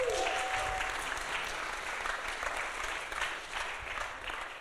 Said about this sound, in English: That's the moment you can clap and say.